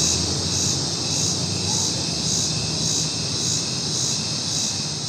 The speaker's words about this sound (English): Maybe you recognize the cicadas in this, in Denver. And the question is, are they out in force this year?